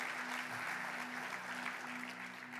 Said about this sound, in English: I'm going to just assume that you're clapping for two reasons. One is our productions team, again, is just unbelievable.